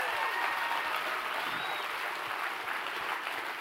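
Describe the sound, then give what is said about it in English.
A crowd claps steadily for the volunteers who make Young Adults work, a dense, even wash of applause at moderate loudness, with a few faint whistles or cheers rising over it and no one speaking. “They work huge events, and so can we please give a round of applause for the people that make Young Adults work?”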